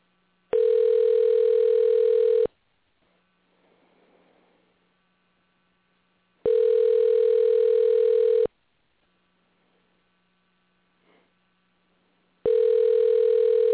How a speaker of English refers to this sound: We're going to make a phone call.